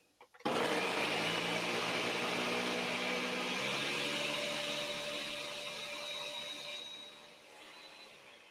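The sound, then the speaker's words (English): An electric blender switches on abruptly after a couple of small clicks and runs with a loud, steady, whining motor roar for several seconds, its pitch shifting slightly and easing off toward the end. “Okay, let's put this on and get it blending up.”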